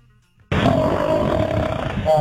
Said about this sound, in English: This is a liger, which are not only a real animal, half lion, half tiger. This is liger mating. It's real quick. It's just 2 seconds, but here you go.